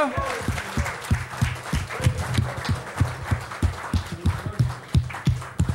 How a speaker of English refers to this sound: Well, let's clap our hands for the Lord one more time. Hallelujah.